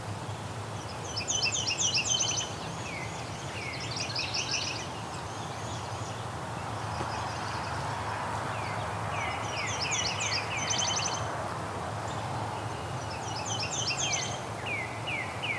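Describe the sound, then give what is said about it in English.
A Nashville warbler sings repeatedly, high thin chippy phrases in quick bursts spaced a few seconds apart, over a steady low background hum with other faint birds. “That was the Nashville warbler.”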